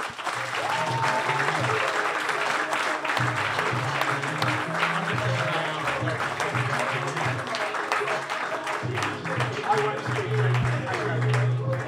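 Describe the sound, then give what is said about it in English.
A crowd gives a huge round of applause to a guest known for his Ipswich Town statistics, clapping steadily for about twelve seconds: a dense, even wash of many hands at constant loudness, with a low pulsing bass tone running underneath. “Please, huge round of applause.”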